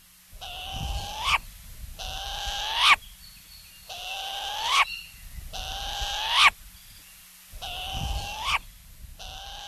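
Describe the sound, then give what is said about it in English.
A Hawaiian short-eared owl (Kueo), Hawaii's only native owl, gives a series of five harsh, rasping calls, each rising into a sharp, squeaky ending, repeated at steady intervals with no talking. Recording from the Cornell Lab of Ornithology. “University of Hawaii at Hilo Professor Patrick Hart introduces us to Hawaii's short-eared owl.”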